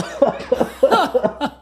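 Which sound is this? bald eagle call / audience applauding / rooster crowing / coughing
coughing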